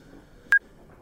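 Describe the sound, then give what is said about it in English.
A single short electronic phone beep as a call is answered, sharp and fairly loud, against a quiet background with a faint steady tone underneath. “I'm answering another phone call.”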